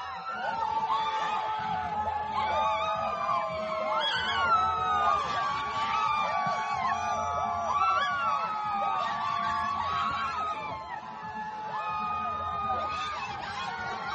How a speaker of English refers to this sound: And that was them chanting and cheering outside.